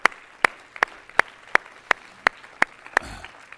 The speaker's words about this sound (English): Everybody clap your hands this morning.